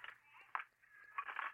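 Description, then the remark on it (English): A delivered package of shattered glass being shaken at a front door, giving gritty crunching rattles in three uneven bursts, with a brief sharp clink in the middle and a busier rattle at the end. “Just stood in front of my door, rattling my package.”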